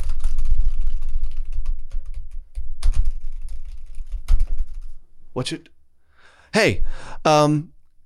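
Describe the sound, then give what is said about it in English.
Several seconds of rapid clattering keystrokes over a low rumble, as if typing on a computer keyboard, followed by a few short, playful voiced vocal noises. “This is me typing, you know, okay.”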